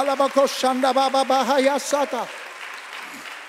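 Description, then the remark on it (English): A church audience claps their hands for Jesus in a loud, dense burst of applause, with raised voices singing and calling out on top, then the clapping fades into a softer murmur. “Clap your hands for Jesus one more time.”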